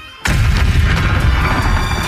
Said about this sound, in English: Where's that explosion? Oh, there it is. I was screaming. I barely heard it. There it is. Explosions.